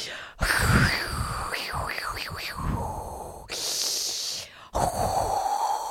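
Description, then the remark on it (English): A voice imitates heavy, raspy breathing, several loud wheezing inhales and exhales in a row with a gritty, rattling texture, no words spoken. “I mean, it sounded like Darth Vader taking his last breath, literally.”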